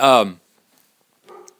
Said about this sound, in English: So the ZenTri Studios alert system, which you probably just heard the dog barking, kind of keeps to himself.